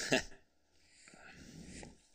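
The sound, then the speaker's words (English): A voice imitates a sneeze: a sharp, loud voiced burst at the start, then a longer breathy, hissing exhale that trails off. “And then he sneezed out feathers.”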